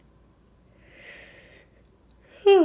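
A yawn: a long, breathy intake of air builds softly, then breaks into a loud, voiced groan that slides downward at the end. No other voices are present.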